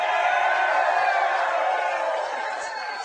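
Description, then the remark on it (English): A large, oversold crowd at a Chiefs Kingdom show at the Hy-Vee Market Grill in Lee's Summit roars and cheers in a dense, steady wash of voices, loud throughout and easing slightly toward the end, with no single voice standing out. “And we have got an incredible crowd tonight, oversold crowd.”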